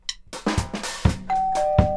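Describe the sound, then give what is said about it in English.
A doorbell rings, its chime tones striking three or four times in quick succession, with one steady tone lingering and ringing on at the end. No one speaks. “Yeah, I think Liz and Maury are here. Oh. I'm gonna go get the door.”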